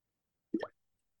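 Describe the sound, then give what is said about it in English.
A single short slurping sip of coffee at 10:30 a.m., a quick wet plop that rises slightly in pitch and is over in a fraction of a second, with silence around it. “Coffee sip. Yes, I am still drinking coffee at 10:30 a.m.”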